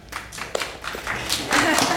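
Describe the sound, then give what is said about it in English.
Thin, scattered applause from an audience voting by applause for a story: a handful of light, irregular claps that never build into a full round, with faint murmuring underneath. “So slight applause.”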